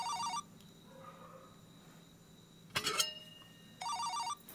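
A mobile phone rings in two short electronic bursts of its ringtone, separated by a pause and a brief clattering knock, with no one speaking.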